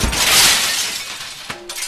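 Glass shatters in a loud, bright crash right at the start, then fades into scattered tinkling as a few last shards clink down near the end. No voices.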